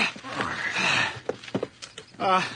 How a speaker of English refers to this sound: There. Horse is all hooked up. Up you go.